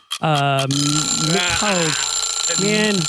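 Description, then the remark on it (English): A harsh game show buzzer blares once, loud, for about half a second during a name-guessing round, before voices start talking and laughing over the fading room tone. “I was getting ready to say Mickey as soon as the buzzer went off.”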